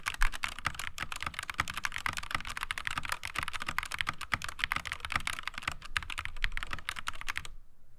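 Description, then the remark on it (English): Rapid, steady typing on a mechanical keyboard, with crisp key clicks and clacks running continuously for several seconds before stopping abruptly. No voices are heard. “I'm kind of bummed about that, but otherwise I love this keyboard for some reason. So okay, let's take a listen real quick.”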